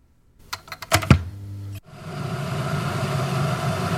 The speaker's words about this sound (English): Because it sounds so close, it's boiling a kettle. And then it clicks when it's boiled.